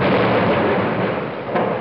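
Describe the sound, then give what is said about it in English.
A loud thunder sound effect introducing a lightning round quiz segment, a dense continuous rumbling roar that stays strong and steady for a couple of seconds with no voices over it. “It's time for a little thing we call the lightning round.”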